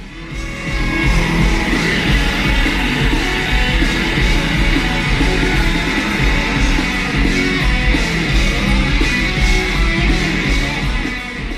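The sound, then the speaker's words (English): A big scream kicks off a loud live band performance, the raw yell blending into a dense, sustained wall of distorted instruments and crowd noise that stays intense to the end. “But man, do you get that big scream in the beginning?”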